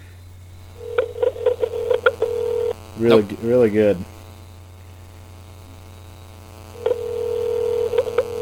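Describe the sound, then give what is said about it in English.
A telephone line hums with a steady tone and rapid clicking as a call to a Motorola Razr flip phone connects, pauses for a few quick spoken words, then the tone and clicks return. “we give Sean Duty a call”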